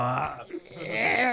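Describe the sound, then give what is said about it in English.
A single long, rumbling burp with a strained, groaning tone, made while moving away from the microphone, its pitch wavering and shifting as it drags on for over a second, fairly loud throughout with no other voices. “I just want to hear you burp, but not quite make it away from the microphone. So it's like, it's like a Doppler burp.”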